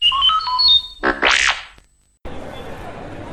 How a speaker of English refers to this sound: You will know it is time to turn the page when you hear R2-D2 beep like this.